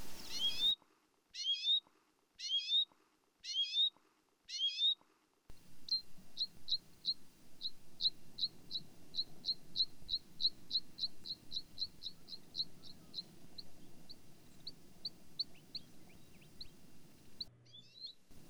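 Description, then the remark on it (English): A bluethroat mimics common redpoll calls: five separate rising notes with pauses, then a long, rapid run of short high chips that fades toward the end over soft outdoor background noise. “Now, the common red poll.”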